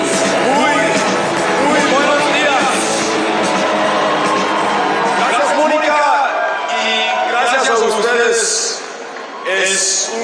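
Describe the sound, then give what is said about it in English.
An audience, including Spanish-speaking members, cheers loudly as a speaker takes the stage, a dense wash of many overlapping shouting voices that holds steady for about ten seconds before easing slightly near the end. “Listen for the cheers from audience members who clearly speak Spanish.”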